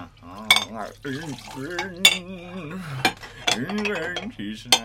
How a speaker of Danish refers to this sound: Der står en person og vasker op.